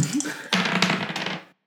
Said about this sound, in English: that's a solid snake eyes right there.